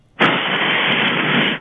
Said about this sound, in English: Could you do me a quick favor? Sure. Just blow into your phone real hard for me real quick. Like, could you do that?